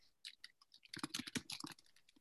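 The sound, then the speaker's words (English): Quick bursts of typing on a keyboard: a flurry of crisp clicking keystrokes that pause briefly, then speed up into a dense run. No one speaks. “What are you typing?”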